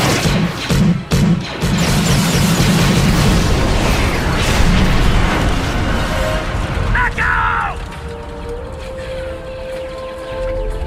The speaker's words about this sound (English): But during his brave attempt to protect the shuttle, it was hit by the laser cannon and exploded.